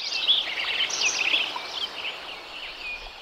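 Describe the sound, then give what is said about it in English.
A dense spring dawn chorus recorded in spring 1988, with about ten bird species chirping, trilling and whistling over one another in a steady, high-pitched wash, before selective logging of the area. No voices present. “With permission granted to record both before and after the operation, I set up my gear and got this wonderful, rich recording in the spring of 1988. There were probably 10 species of birds at that particular moment that we've identified.”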